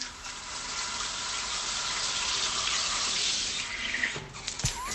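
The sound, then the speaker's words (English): A shower is turned on and runs with a steady hiss of spraying water for about four seconds, then the flow shifts and a short knock is heard near the end. “And turn on the shower.”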